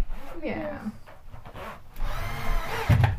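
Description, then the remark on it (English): A power drill whirs in short bursts, its motor pitch climbing as it spins up, then a rougher, grinding stretch as a screw is driven in to attach a shelf. “I don't like the sound of drill.”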